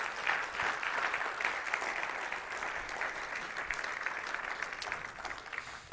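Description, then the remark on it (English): A church audience applauds a team that has come to the stage, steadily, a dense wash of many hands clapping at an even loudness for several seconds with no voices over it. “And let's applaud them, because this is a big deal.”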